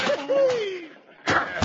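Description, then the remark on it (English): A chair cracks down on a man's head, two hard wooden smacks in quick succession, after a long falling, moaning tone that slides downward in pitch. “I sure hate to bruise up a chair with a head like his.”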